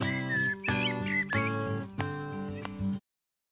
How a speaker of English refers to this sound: Do you hear the birds squeaking?